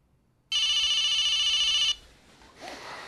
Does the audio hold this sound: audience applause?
no